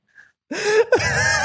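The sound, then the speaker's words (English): Heavy breathing in a music track: a loud, rasping breath followed almost immediately by another, preceded by a brief faint tone. No talking. “It's not even music. It's just someone breathing.”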